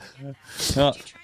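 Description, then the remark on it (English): A person vocally imitates a small dog's sneeze: a brief voiced lead-in, then a sharp, hissy snort and a short squeaky tail, fairly loud, over about a second. “I always love doing, like, when, like, your dog's small. Do you have, like, do you have a dog? Yeah, yeah. Great Dane. Okay, so, like, when they, like, sneeze.”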